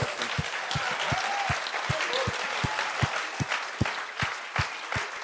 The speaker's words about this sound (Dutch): Good job. Come on, why don't we give them all a hand? Geweldig goed gedaan. Laat ze allemaal applaus geven.